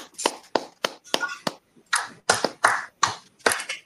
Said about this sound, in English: Hey, everybody, a round of applause